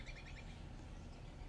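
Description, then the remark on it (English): A few quick, high bird chirps sound at the start, faint, as birds sing in Central Park, with robins on the grass and the weather changing, then fade into a steady outdoor background hum with no one talking. “The birds are singing because the weather's changing and they gotta eat.”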